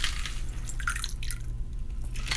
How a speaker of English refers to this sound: All right, I will move your cutting board and your implements and let you pour it in these glasses. These are some beautiful. Small cocktail glasses. Beautiful amber color.